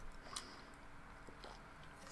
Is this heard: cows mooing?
no